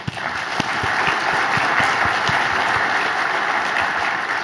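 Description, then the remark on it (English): Steady audience applause for award winners at an awards event fills the whole stretch, a dense wash of many hands clapping at an even, sustained loudness with no voices on top. “Let's give our award winners a round of applause.”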